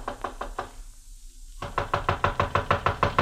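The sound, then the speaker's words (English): Knocking on the door of a houseboat anchored on the Nile, in two bursts: a few quick raps, a brief pause, then a longer run of steady, firm knocks, with no voices. “I walked up the narrow awning-covered gangplank that led to the little deck and knocked at the door.”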